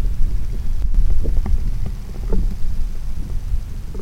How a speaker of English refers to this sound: let's listen to a hydrothermal vent.